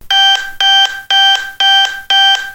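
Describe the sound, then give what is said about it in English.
A loud diabetes monitor alarm beeps five times in a steady, evenly spaced rhythm, each harsh electronic tone lasting about a third of a second, with no voices present. “I'm going to put in a sound effect after this, something like, or whenever my diabetes alarm goes off, the really, really loud, annoying sound.”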